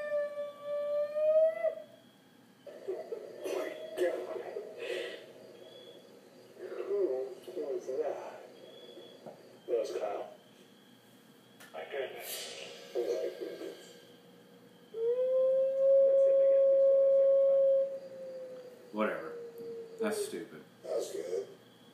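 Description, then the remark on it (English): A man's voice imitates a Sasquatch in the woods at night while searching for one, with two long, sustained, wavering howls, one at the start and a louder one later, broken up by shorter shouted bursts and vocal noises. “Now he's just screaming.”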